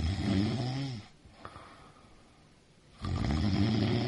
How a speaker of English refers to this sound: You guys ever dated anyone who snores? I have before. Imagine trying to sleep next to this all night.